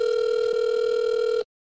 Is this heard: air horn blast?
no